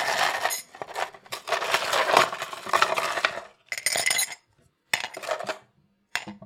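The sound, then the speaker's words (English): Ice cubes clatter and clink into a cup in a dense, bright rattle for about four seconds, followed by two shorter bursts of clinking separated by brief silences. No one speaks. “And I've got my ice.”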